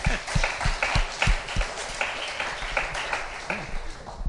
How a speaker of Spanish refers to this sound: Vamos, démosle un aplauso.